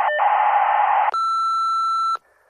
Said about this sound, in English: Leave a message at the beep